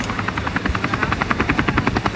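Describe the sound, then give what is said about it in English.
A helicopter flies by, its rotor blades thumping in a fast, steady rhythm over a loud engine roar, with no voices. “We've been able to coordinate with other partners who are flying helicopters into the most hard-to-reach areas, villages and towns up in the mountains that no one has gotten to”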